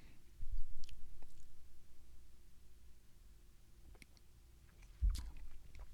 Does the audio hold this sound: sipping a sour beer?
yes